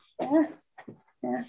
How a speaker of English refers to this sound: Yeah. Now a doggy.